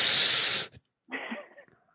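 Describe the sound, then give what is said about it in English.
A loud, breathy exhale blasts straight into the microphone for over half a second, then cuts off; after a short pause comes a softer, murmured breathy sound. “I've been exhaling not as hard this one. Just for a little dramatic effect here and there.”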